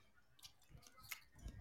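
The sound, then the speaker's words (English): Someone chewing crunchy Cool Ranch Doritos chips, a few crisp crunches over soft, wet mouth sounds, with no talking. “I know that sound. I can even name the Doritos. That's Cool Ranch.”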